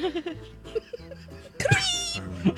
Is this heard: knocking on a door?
no